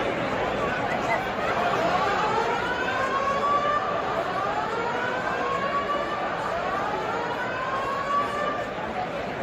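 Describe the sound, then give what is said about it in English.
A fire alarm sounds in an arena during a Wisconsin against Indiana game tied 54-54 with 10:06 remaining, its loud, repeating rising whoops sweeping upward every couple of seconds over a steady wash of crowd murmur and noise. “Yeah, that's going to be a fire alarm.”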